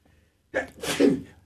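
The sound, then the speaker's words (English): A single loud sneeze with a quick sharp intake of breath leading into an explosive burst, heard on its own without talking. “Bless you there.”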